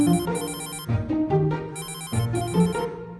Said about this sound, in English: Then the phone rang.